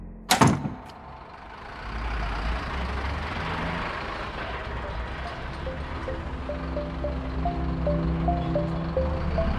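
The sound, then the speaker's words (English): A door shuts with a single loud thud at the very start, followed by a steady low engine rumble like a bus pulling away, with faint rising whine and no voices. “Then she closed the door before Henry could ask anything more.”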